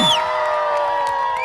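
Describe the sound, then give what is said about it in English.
An audience at a juggling performance cheers loudly for volunteers, with high whoops and sustained shouting voices blending into a steady roar that holds at full volume for the whole moment. “One more time, make some noise for these volunteers!”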